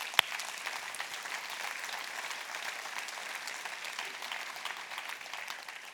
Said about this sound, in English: It's the first time you clapped, I was able to have a glass of drink of water. So thank you for that.